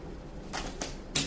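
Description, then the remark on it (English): A deck of cards being shuffled: three short, crisp bursts of papery riffling at an uneven pace, fairly quiet, with no one talking. “This goes back to what I was just saying while I was shuffling.”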